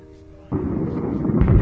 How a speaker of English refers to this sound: I thought there was no fucking thunder. All but one, you said. There was one.